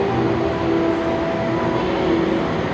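Steady ambience of a theme park train ride: a continuous rumbling hum with a faint sustained tonal whine, holding an even, moderately loud level throughout with no voices.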